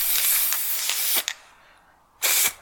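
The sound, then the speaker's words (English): A can of gold spray paint hisses in a long continuous burst with a few faint pulses as it sprays a person's leg, then stops briefly before a second short, forceful spray, with no talking. “Why did I cover my mouth if you were spraying my leg?”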